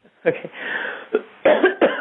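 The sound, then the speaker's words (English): Several harsh, forceful deep coughs come in quick bursts with a breathy rasp between them, loud, like a group coughing hard together on command during a prayer. “Now take one deep cough and cough them all out.”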